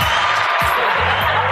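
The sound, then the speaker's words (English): A crowd cheering sound effect: a loud, steady roar of many voices with no break, lasting under two seconds, with a few faint low voiced tones mixed into the noise. “What did the crowd think?”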